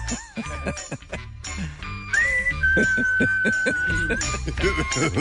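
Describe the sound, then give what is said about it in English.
A person whistles Negan's whistle tune, a short tune of a few sustained, steady notes, clear, while other voices talk and murmur underneath. “Isn't that the whistle?”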